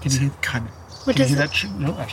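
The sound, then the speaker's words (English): A thin, high-pitched buzzing call from an owl chick, much like a cicada, drones steadily in the background while people talk over it. “Can you hear that? Yeah, go for it. Sounds more like a cicada than a...”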